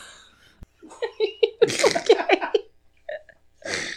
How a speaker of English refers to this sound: Thank you for not sneezing into the microphone. But I don't like that you sneezed into the same hand that you then used to. I didn't. Nothing came out of my face.